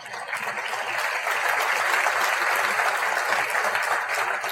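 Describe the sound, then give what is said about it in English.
A church audience applauds steadily for several seconds, a dense, even wash of many hands clapping at once with no pauses and no voices rising above it. “They are the servants of God, and you can clap for them.”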